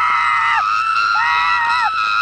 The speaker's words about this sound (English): his screaming is hilarious. It's like some of the funniest, like, screaming I've ever heard in a film. This high-pitched screaming. And at one point, it's, like, layered. There's, like, layered screams.